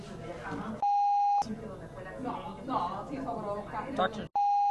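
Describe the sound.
Two loud, steady censor bleeps, pure sustained tones, cut sharply into ongoing speech to mask a doctor's name; the first lasts over half a second, the second clips in at the very end as talking continues between them.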